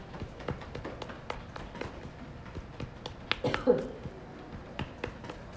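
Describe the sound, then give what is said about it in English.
Repeated dull pats of a fist against the side of a leg, coming in a quick, slightly uneven rhythm, moderately loud, with faint background voices now and then. “Take a good breath and bring your hand forward, make a good fist, and pat out that side of your leg.”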